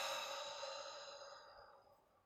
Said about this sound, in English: And we're going to start by bringing in some deep breaths. And we're going to breathe in all the way down deep into your diaphragm, letting your stomach expand, and then exhaling out all the breath.